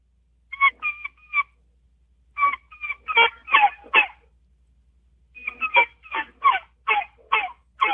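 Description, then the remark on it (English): A turkey game call blown in wild turkey kee-kee fashion: three runs of sharp, squeaky, whistling notes, each run longer than the last, loud, with short silences between. “You can do kikis on it.”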